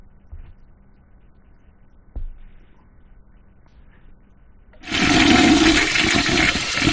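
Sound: toilet flushing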